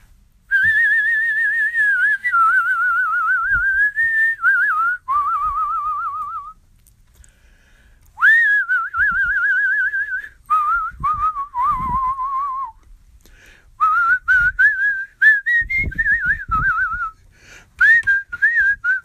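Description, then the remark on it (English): A person whistles a slow, wavering song melody, with sustained pitched phrases broken by short pauses and a few soft breaths or taps underneath, no talking. “You know, when I'm down in the dumps, I feel like whistling. And sometimes I just whistle.”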